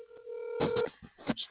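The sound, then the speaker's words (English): A steady electronic telephone tone sounds with a faint, tinny quality, as if played from a handset held near the mic, followed by a few short clicky bursts and blips. “I'm holding the phone up so you can hear, dear listener.”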